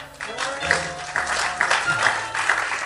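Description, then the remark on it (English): A crowd claps steadily for about three seconds, a dense, continuous patter of many hands at even loudness, with faint voices murmuring underneath. “I thought somebody would have been clapping.”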